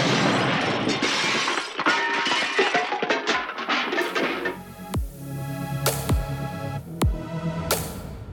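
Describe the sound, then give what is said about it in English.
A loud, chaotic crash of shattering and breaking debris tumbles for several seconds, followed by a low throbbing rumble punctuated by three sharp, sweeping impacts. “These are all topped off with detailed and layered soundscapes of crashing cars, rushing rivers, and comedy collapses.”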